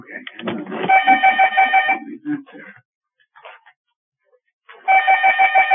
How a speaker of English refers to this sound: Now we're going to have the phone ringing. Can I answer it?